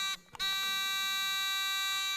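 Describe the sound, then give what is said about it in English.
A harsh, electronic buzzer sounds twice: a short blast, then after a brief break a longer, steady one. Loud, with no one talking. “That takes two buzzes right there.”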